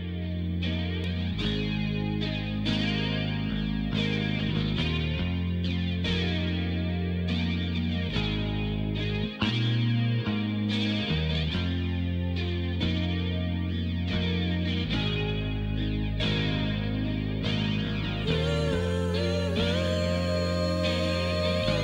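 A heavy rock song from an album plays with loud distorted guitars, a steady driving beat and sustained low bass notes, the dense full-band sound continuing without any voices for the whole stretch.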